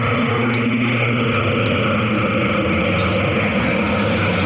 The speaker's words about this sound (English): Sorry, everybody. Sometimes the cursed amulet drones like that when it's not pleased with me.